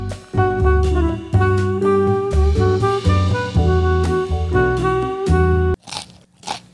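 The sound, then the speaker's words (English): Loud, steady crunchy chewing of California Pizza Kitchen pizza with dense, repeated bites and a resonant hum underneath, then two separate sharp crunches after a brief pause. No one speaks. “What are you eating”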